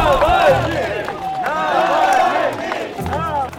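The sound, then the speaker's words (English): A large crowd at the 2011 protests in Russia, electrified by Alexei Navalny, cheers and shouts, many overlapping voices rising and falling in loud, continuous waves with no pause. “Alexei Navalny electrified crowds during the 2011 protests.”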